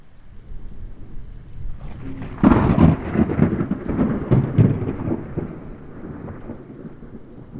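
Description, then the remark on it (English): A loud crack of thunder breaks out and rolls on for several seconds over steady, hissing rainfall, then fades back into the rain. “It's really a win-win, except for lightning. Lightning loses, but lightning does get to contribute to your happiness, so that's right.”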